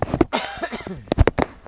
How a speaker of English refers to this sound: So, hang on, I'm going to cough, I think.